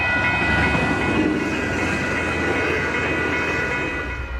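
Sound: train riding on rails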